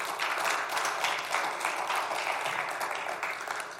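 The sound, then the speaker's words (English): A church audience, asked to give one collective clap, instead produces a steady, scattered patter of applause lasting a few seconds, moderately loud, with no voices over it. “Have you enjoyed your old school service this morning? One clap.”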